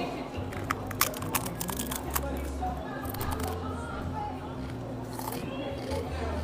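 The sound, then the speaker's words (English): Cajun-seasoned potato chips being crunched right up against the microphone, a rapid series of sharp, crackly bites and chewing sounds over a steady low background hum. “I'm going to chew on the mic just so you can hear the crunch.”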